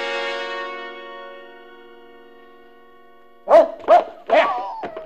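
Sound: dog barking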